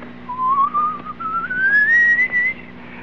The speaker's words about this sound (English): I will whistle in the dark for you. Take the load off your back for the next 45 minutes.